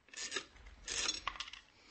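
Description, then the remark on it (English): A dime drops into a coin-operated radio: two brief metallic scraping rattles followed by a few quick, sharp clinks, fairly faint, with no one talking. “Here's a dime. Throw it in the radio. No? Then I'll throw it a dime.”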